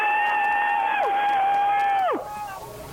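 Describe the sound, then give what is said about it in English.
Several callers scream together over a merged phone line, live on air, in a thin, tinny, phone-quality blend, holding a steady high pitch for about two seconds before the screams slide downward and drop off, leaving faint hiss. “Everybody scream at once.”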